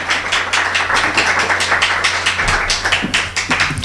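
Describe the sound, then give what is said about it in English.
An audience at the Institute of World Politics applauds a guest speaker with steady, dense clapping that stays loud and even throughout, a continuous crackle of many hands with no voices rising above it. “And let's please give him a warm round of applause.”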